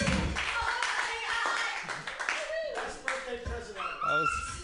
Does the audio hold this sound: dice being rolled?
no